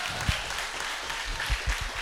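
An audience at a church service claps for a pastor in a dense, steady burst of applause, a continuous crackling wash of many hands with a few louder low thumps, and no voices.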